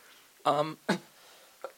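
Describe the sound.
A voice gives a short voiced grunt, then two quick, breathy coughs, the second one fainter, with a brief pause between them and quiet room tone around.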